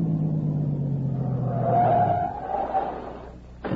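A car engine rumbles steadily, its low drone gradually dropping in pitch as the car slows and stops at a cave entrance where the road dead-ends, idling down, followed by a brief sharp knock at the very end.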